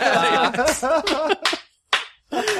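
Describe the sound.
A voice tells a joke about a chicken crossing a Mobius strip, followed by a slow clap: a few slow, evenly spaced, sharp hand claps with short silent gaps between them.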